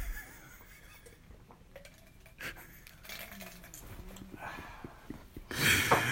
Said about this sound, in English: Edit that drinking out, but those gulps.